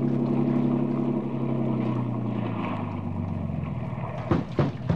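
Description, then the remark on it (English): A motorboat engine drones steadily, its pitch sliding slowly downward as it throttles back, with a few sharp knocks and splashes near the end. “Keep this boat alongside.”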